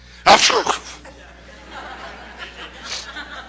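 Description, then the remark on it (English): A person mimics a sneeze with one sharp, loud, breathy burst near the start, followed by a few seconds of quieter murmuring and background noise. “My life is like somebody sneezed.”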